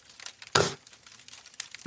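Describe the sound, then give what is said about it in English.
A cough drop wrapper crinkles as it is unwrapped, with a loud burst of crackling, then scattered softer rustles and a final crinkle at the end. No one speaks. “I'm going to throw in a cough drop, sorry.”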